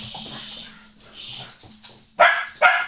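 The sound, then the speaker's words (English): Two sharp, loud barks from the dog Mari at a neighbour walking through the village singing, spaced a few tenths of a second apart, following a stretch of quieter background sounds and faint whimpering. “And so Mari wants to bark him.”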